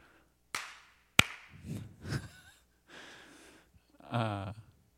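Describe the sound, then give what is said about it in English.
A sharp hand clap cracks out once after a softer tap, marking the start of a take while recording a church video, followed by breathy sighs and murmured vocal sounds before a short, voiced breath near the end. “I got a clap.”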